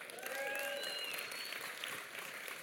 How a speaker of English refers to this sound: And so I don't know if that sounds good to you, but if that sounds good to you, give God a huge round of applause.